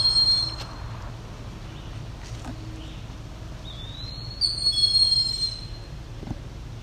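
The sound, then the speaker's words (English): An eastern wood-pewee gives a thin, slurred whistled call that rises and then drops, heard once partway through over a steady low mechanical rumble. “That's an eastern woodpewee calling.”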